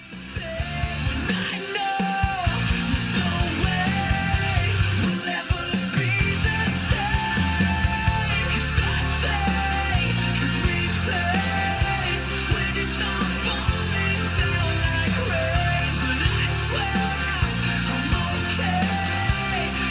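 A rock band song plays loud and steady throughout, with dense driving guitars, pounding drums and a sung lead vocal over a full, heavy mix.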